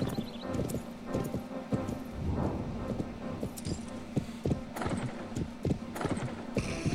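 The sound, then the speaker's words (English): Steady clip-clop of horse hooves trotting in a brisk, even rhythm in the horse-riding video game Planet Horse, fairly loud, with a faint jingle of tack and a low background hum throughout. “You must have to be some kind of star horse rider to figure this game out.”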